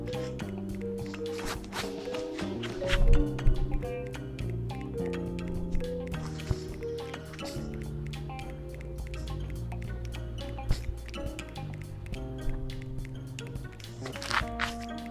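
Water leaking and splashing down, with a steady wash of falling water and many quick, irregular drips and splats, continuing at a fairly even level throughout.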